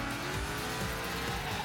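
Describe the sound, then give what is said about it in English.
A racing car engine in the Gameloft game GT Racing roars while tires squeal against the pavement, a continuous, loud burst of revving and skidding with no talking. “reimagined in-game physics to add even more realism to a car's behavior, and different sound effects that reflect the power of your car.”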